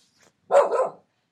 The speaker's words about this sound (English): Oh, hold on. Whose dog is barking? Is that Wilford? Tell Wilford he's not allowed on the show.